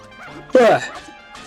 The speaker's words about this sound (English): Alright, we got some... the dog's barking at these seedlings.